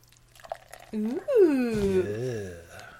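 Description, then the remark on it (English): Reddish-brown, malty beer pours steadily into a cup, a gurgling, glugging stream whose pitch bends and rises for about two seconds as the cup fills, preceded by a few soft clinks. “And the pour.”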